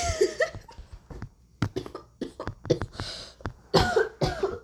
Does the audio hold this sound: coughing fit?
yes